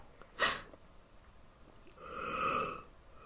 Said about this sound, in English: Are you just always tired? Yeah. I'm always yawning.